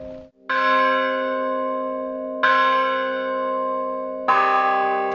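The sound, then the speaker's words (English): Church bells tuned to C and G are struck with sticks three times, about two seconds apart, each strike loud and clear with a long, rich ringing tone that overlaps the next. No one speaks. “It's not a story of renting these church bells”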